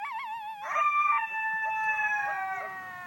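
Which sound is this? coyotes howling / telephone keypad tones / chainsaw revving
coyotes howling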